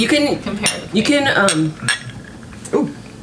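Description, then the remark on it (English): Glasses of a banana, fresh coconut and ginger-infused vodka drink clink together in a toast, a few sharp bright taps in quick succession, with voices murmuring and chatting around them. “Cheers.”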